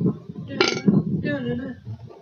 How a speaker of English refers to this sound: That was a weird burp.